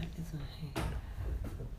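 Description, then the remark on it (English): A door bangs open or shut with a sharp thump, followed a moment later by a softer second knock, while muffled voices murmur in the background. “There's like this treacherous door.”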